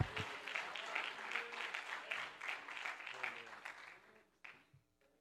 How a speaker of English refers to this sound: Would you give the Lord a hand clap again as you're seated?